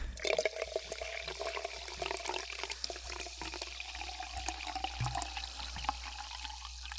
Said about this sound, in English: Yeah, this water needs to be poured into a glass. This is the way to enjoy this water.